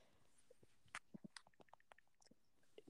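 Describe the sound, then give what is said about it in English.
Quick, irregular tapping of keyboard keys, a run of soft clicks and clacks of varying loudness with short pauses between bursts, faint overall and with no one talking. “Stop typing, you're stressing me out.”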